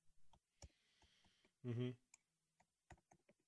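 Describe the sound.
Fast, uneven clicks of typing on a computer keyboard, close and fairly loud, with a brief voiced sound interrupting midway.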